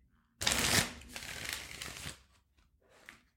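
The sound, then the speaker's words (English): A deck of cards being riffle shuffled, a burst of rapid flutter that tapers into a softer bridge and settle, then one brief final tap of the cards. “So we're going to get a real shuffle and an ear pick shuffle.”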